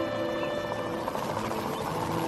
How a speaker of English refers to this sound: The chopper's here!